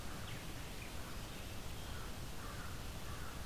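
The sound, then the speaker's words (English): Many distant crows cawing faintly over a steady wash of outdoor background noise, the calls soft and scattered rather than loud. “A lot of crows in the distance.”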